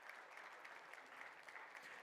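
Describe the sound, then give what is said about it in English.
An audience at a church service applauds a speaker coming up to share, with steady, dense clapping that fills the whole moment, fairly soft, with no voices standing out. “Let's give Kareen a round of applause.”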